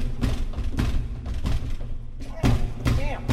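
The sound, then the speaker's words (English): Heavy thumps against a stuck door, about five loud blows landing at an uneven pace over a few seconds, with a dull rumbling resonance between hits. “Damn door!”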